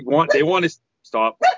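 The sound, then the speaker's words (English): A dog named Tink barks: one long, wavering, drawn-out bark, then a short pause and two quick, sharp barks in succession, all fairly loud and tonal. “Was that Tink barking? Yes.”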